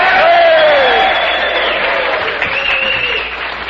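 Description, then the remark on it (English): A crowd down in the village cheers and applauds the band from the Red Garter about a block away, in hot, steamy weather, with dense, steady clapping and scattered high whoops and shouts rising above it, loud from start to finish and easing only slightly at the end. “That was the band from the Red Garter down about a block ago. Give them a cheer before they leave.”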